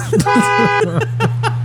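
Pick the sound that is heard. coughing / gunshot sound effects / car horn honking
car horn honking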